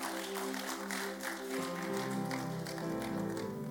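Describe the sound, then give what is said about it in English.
An audience claps in steady, crowded applause, the many hands blending into a continuous patter over sustained instrumental music with held tones, with no one speaking. “I thought you'd give the Lord a good clap.”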